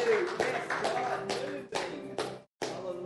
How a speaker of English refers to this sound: Clap your hands for the Spirit of God living in you.